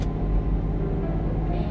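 Steady low rumble of road noise from inside a moving car, the speaker's husband's vehicle, a constant droning hum with no speech, holding at an even level throughout.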